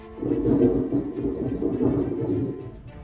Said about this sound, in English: What is that noise? Someone moving their garbage can.